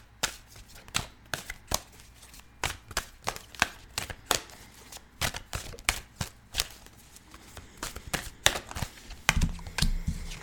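Tarot cards being shuffled during a tarot reading, a run of sharp, crisp riffling snaps and slaps at an uneven, brisk rhythm, with no voices, ending in a denser flutter of card noise.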